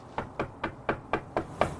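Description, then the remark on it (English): Six firm knocks on a front door in a steady, evenly spaced rhythm, each a sharp, resonant thud, moderately loud with no voices. “It wasn't just Amy's door I knocked on to get answers.”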